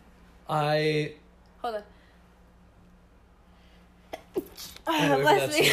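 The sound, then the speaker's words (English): Loud sneezing: drawn-out voiced wind-ups and a couple of sharp, breathy bursts, with pauses in between and a final strained vocal sound at the end. “Bless you. But I knew pretty early allergies.”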